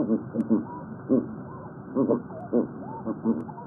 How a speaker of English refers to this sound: Seals like the ring seal you just heard are listening too.